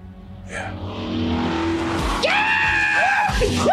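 A car's engine roars as its tires squeal loudly across a driveway, with a long skid followed by a couple of sharp, rising screeches near the end.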